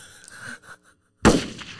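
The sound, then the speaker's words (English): A single loud gunshot sound effect cracks out sharply and rings off in a short decaying tail, following a brief stretch of faint, muffled tonal sound and a moment of silence. “Gunshot to clear the room.”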